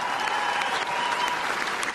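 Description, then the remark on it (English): Steady audience applause fills the whole stretch, a dense, even wash of many hands clapping at a moderate level with no voices standing out. “You might clap or you're a little salty, but hey, stay salty, babe.”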